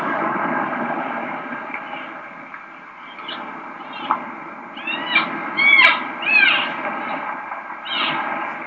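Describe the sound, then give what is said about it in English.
A cow elk gives a string of high, nasal 'selfish' mew calls, each sliding downward, repeating irregularly several times over a steady low rumble of background noise. “We'll round it out and she'll end up on that selfish mew and we'll kind of talk and see where we want to go.”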